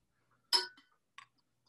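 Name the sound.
glass clinking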